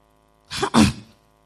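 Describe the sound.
A male preacher, retelling a Bible story during a sermon, imitates a child's sneeze: a quick sharp intake followed by a loud, breathy burst, clear and lasting under a second with no other talk.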